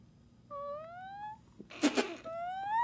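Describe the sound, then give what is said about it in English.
A voice imitates a fart: a drawn-out, rising tone like a questioning fart, then a short harsh burst, then another rising, whiny tone that trails off at the end. “Like that sound, like a question mark fart or something.”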